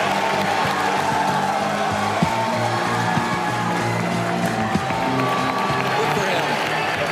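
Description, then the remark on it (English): A large crowd at the 2005 NFL Draft cheers and applauds as the Green Bay Packers select quarterback Aaron Rodgers of California with the 24th pick, a steady, dense roar holding for several seconds, with clapping and scattered shouts blended into the loud, continuous noise. “Oh, he won a lot of people in this crowd.”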